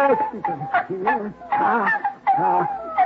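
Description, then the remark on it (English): Six newborn puppies whimper and squeal, a continuous stream of thin, rising and falling cries from the pups overlapping in quick succession. “What's that mooing sound, Al? Chew. Well, how did you prove it? Puppy. Puppies, Dollar.”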